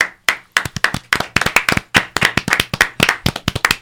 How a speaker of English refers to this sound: And clapping. That's why we had so many claps.